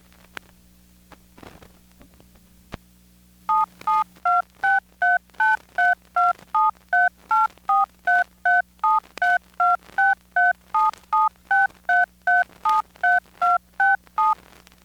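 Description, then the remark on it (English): A long, steady run of touch-tone telephone dialing beeps from a badge record obtained at DEF CON, about two dozen short dual-pitched tones at an even rhythm and varying pitch, loud and alone after a few quiet seconds. “Okay, so those tones are also from my badge slash record that I got at DEF CON. The tones correspond to telephone touch keys, and like the other two recordings, I have no clue what the message is about, but it doesn't matter.”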